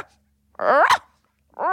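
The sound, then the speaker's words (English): A person imitates a small, yippy dog with two sharp, high-pitched vocal yaps separated by a short pause, fairly loud, with no other talking. “this guy started barking at her like a dog.”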